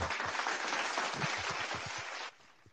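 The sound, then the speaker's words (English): A burst of applause, dense hand clapping with scattered sharper claps, steady and fairly loud for about two seconds before cutting off abruptly into quieter background noise. “Clap it up for us, man.”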